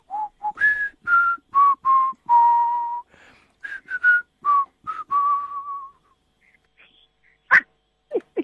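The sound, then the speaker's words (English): A person whistles a lively tune of short, clear notes that rise and fall in a steady rhythm, fairly loud, ending with a few brief sharp chirps and pauses. “I wish I can join you with that whistle, authority.”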